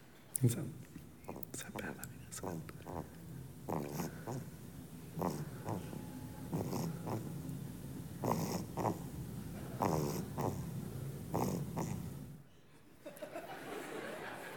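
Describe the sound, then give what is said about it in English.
A baby's tiny, soft snores and snuffling breaths repeat in a steady, quick rhythm, quiet, with no talking, before fading out near the end. “You have to be very quiet to hear it because it's just baby snores.”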